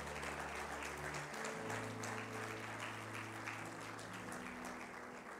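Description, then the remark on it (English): An audience at a morning church service claps steadily to praise the Lord along with sustained organ or keyboard chords, the dense, continuous clapping filling the space at a lively, even volume throughout. “Come on, clap those hands and praise the Lord this morning.”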